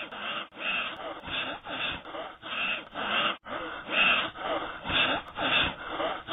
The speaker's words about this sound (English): Yep, that was heavy breathing you heard.